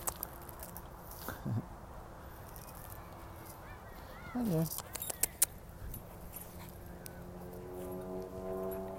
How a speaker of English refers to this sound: Oh, they want to play. They want to play. This is a fun puppy. He's a good boy. Hello. They want to play. These are fun puppies. They're fun puppies.